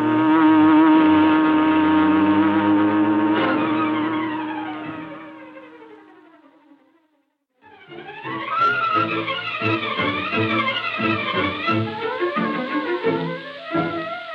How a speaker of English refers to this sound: As Bleeker's car swung into the street and turned toward Schaefer's parking lot, a huge, sleek black car started along behind them. It was the car of the Green Hornet.